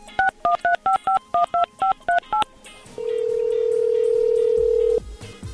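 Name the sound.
telephone number being dialed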